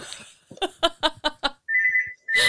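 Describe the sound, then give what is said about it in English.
A landline telephone rings with a steady, high electronic tone in two bursts, following a series of short, loud, choppy sounds. “It's the landline as well. It's not a mobile, so I can't.”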